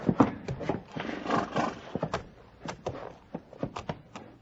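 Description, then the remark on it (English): Horse hooves clop unevenly, a steady series of sharp knocks, with a brief whinny near the start amid shuffling movement. “Sheriff, take your prisoner down off that horse.”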